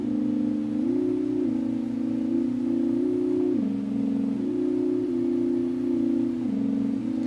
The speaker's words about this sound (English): it's just a cheap little DC motor, as far as I know, we'll get some portamento or glide effect. You hear woo when it gets up. It goes down quick. It can slow down faster than it can speed up. Whee, you get that really cool.